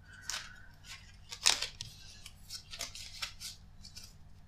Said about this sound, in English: So I think I have perhaps shuffled these cards enough, because it's been about 20 minutes of doing so.